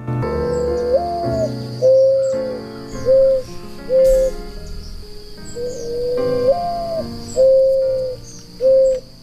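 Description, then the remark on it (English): A mourning dove gives its soft, low cooing call twice: a rising drawn-out note followed by three shorter hoots, clear, with a faint steady insect-like whine behind it. “Our featured feathered friend is the mourning dove.”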